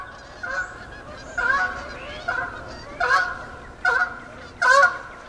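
Geese honk about six times in a loose, steady rhythm, each call a nasal, brassy blast that rises above a constant low background rush, with no voices present.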